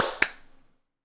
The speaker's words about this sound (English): And then we will clap sync in 3, 2, 1.